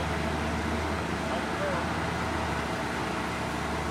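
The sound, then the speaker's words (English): A log truck rumbles along a road, its low engine drone and broad road roar holding steady and fairly loud for the whole stretch, with no clear voices. “Coming down the road over here, it's a log truck.”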